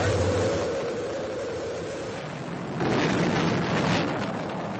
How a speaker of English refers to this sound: 7, 6, 5, 4. We've gone for main engine start.